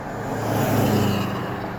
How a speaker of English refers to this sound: Cars.